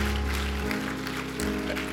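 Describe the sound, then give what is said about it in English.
A church audience gives God a hand clap of praise, a steady, dense patter of many hands over a sustained low musical drone, with no voices standing out. “Let us give God a hand clap of praise.”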